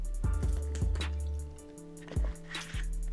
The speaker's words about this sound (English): Hold on, I need to take a sip of this water.